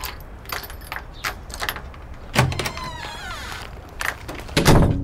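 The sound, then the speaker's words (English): Keys jingle in short metallic bursts as someone unlocks the door to a woman's home, followed by a louder clack like the lock turning and a heavier thump of the door near the end. Nobody speaks. “You have keys to her place, right?”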